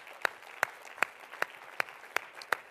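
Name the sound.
audience applauding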